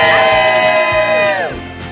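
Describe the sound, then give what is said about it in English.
A large crowd of parade goers and parade participants cheers and whoops outdoors on Wednesday morning, the eve of Thanksgiving, during the Today show, many raised voices blending into a loud, sustained roar that slides downward and tapers off near the end. “And a great crowd out there. A big crowd, a lot of parade goers, parade participants.”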